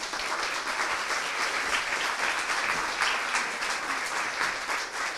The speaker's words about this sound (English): So I want everybody, before we bring out the Q&A and the conversation, to give a huge round of applause for our Moth storyteller, Liel Leibovitz. Ladies and gentlemen.